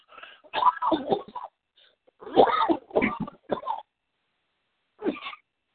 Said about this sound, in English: I yawn and cough at the same time.